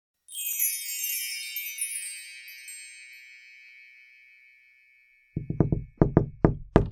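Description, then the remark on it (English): A shimmering, tinkling chime of gnome music rings out and slowly fades to silence, then the visitor Gordon Cobalt knocks on a door, a quick series of firm, loud raps in uneven clusters. “Oh, who's at the door?”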